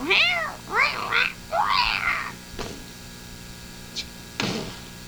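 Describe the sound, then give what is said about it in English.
A cat meows several times in quick succession, loud, with rising and falling wavering cries, followed by a couple of sharp knocks or thumps. “Get that cat out of here.”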